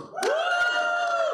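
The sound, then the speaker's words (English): A thin, tepid audience cheer for the video game Final Fantasy Crystal Chronicles, in a vote judged by audience reaction, from what sounds like one or a few voices: a rising, sustained high-pitched "woo" lasting just over a second, with a couple of scattered claps. “So I want you to cheer as loud as you can as I name these off, and we will figure out who the winner is.”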